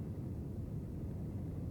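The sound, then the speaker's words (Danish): A steady, low engine roar inside an airplane cabin as the plane accelerates faster and faster for takeoff, a dense, even drone at moderate volume with no voices and no breaks. “Du må gerne sætte dig godt til rette og mærke, hvordan flyet accelererer. Flyet accelererer hurtigere og hurtigere.”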